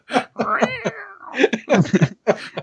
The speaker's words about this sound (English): He's got a stomp box that just says cat noises. Nice. Yeah, it's like a cat's tail, it looks like, and you just stomp on it.